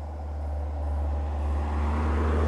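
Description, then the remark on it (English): Steady highway traffic roar, a dense low rumble of passing cars and trucks that swells gradually louder, with no voices present. “I was so focused on the bird in the tree that I didn't hear the highway behind me.”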